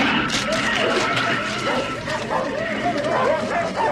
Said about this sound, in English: But they put the dog back in the cage with the other dogs. Yeah. And this is where we get the dog going a bit berserk and opening his face up.